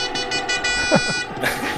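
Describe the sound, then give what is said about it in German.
A party horn blares a buzzy, reedy toot, pulsing in quick repeated bursts before a final louder blast, with no voices over it. “Jetzt füge ich hier eine Tröte ein auf Wunsch eines einzelnen Herrn.”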